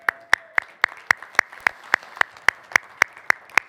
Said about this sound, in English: Man, let's give a round of applause for that worship.